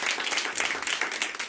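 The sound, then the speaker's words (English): A comedy show audience breaks into steady applause for Eddie Kane, many hands clapping in a dense, continuous wash of sound that stays fairly loud throughout, with no voices standing out. “Round of applause to Eddie Kane for making this happen, man.”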